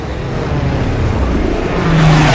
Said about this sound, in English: Hearing the ominous growl of incoming engines behind him, Gillespie twists around, spotting a neat line of Avengers skimming the waves.